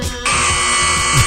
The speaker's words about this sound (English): That deserves a buzzer.